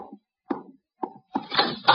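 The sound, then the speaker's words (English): Three firm knocks on a front door in the evening as guests arrive, evenly spaced about half a second apart, followed by a quicker, busier cluster of knocking and rattling. Moderately loud, with no voices. “Archie, the door. Our guests are arriving.”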